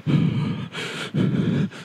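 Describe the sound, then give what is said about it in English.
Forceful breathy huffs of someone breathing on glass to fog it: two long throaty 'haah' exhales, each followed by a quick airy intake, with no talking over them. “When you're breathing on glass and you make...”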